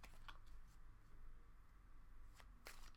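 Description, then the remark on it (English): A deck of cards being shuffled, a few short, crisp riffling snaps spaced irregularly over a steady low background hum, with no talking. “this how you know you a car slinging root nigga for real, because I be shuffling my out of nowhere mid-convo all the time.”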